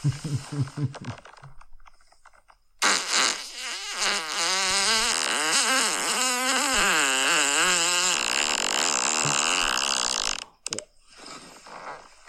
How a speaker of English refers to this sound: Oh my fucking God. I love how a lot of these are just boyfriends farting on their fucking girlfriends. Very good.